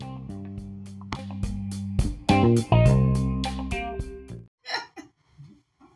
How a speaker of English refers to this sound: It's a lot of breathing, sir. It's a little alarming.